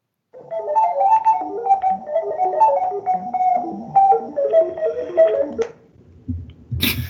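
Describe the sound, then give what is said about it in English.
A beep-boop stats jingle sound effect: a quick, busy run of short electronic tones hopping up and down in pitch for about five seconds, followed by a brief pause and a sharp noisy burst. “So do we want to unveil the new beep boop sound for that?”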